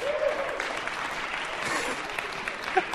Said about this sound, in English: Let's have a high priest. Round of applause for our high priest.